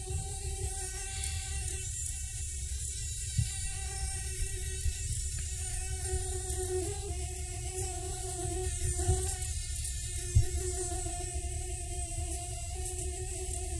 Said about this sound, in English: Okay, is that annoying or what? Well, that's a mosquito. It's part of the 3,500-strong fly species. They've got slim, segmented bodies, three pairs of legs, one pair of wings. They have feathery antennae and elongated mouth parts.